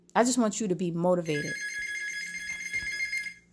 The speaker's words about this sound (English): That's my house phone ringing. Nobody ever calls, but they call now while I'm recording.